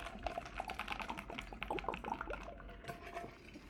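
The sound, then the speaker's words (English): Someone quietly takes a sip of a drink, a run of soft wet clicks and slurping sounds with a faint swallow, and no talking. “Sorry, I had to take a little sip there.”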